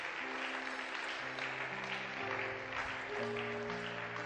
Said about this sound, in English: Church, keep clapping for them as they come.